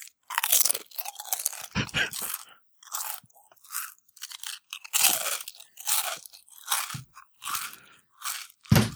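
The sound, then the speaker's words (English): Loud, crisp crunching of Kettle Original Sea Salt potato chips being chewed, a steady series of sharp, bright bursts with brief pauses between bites and no talking. “I got me some Kettle Original Sea Salt.”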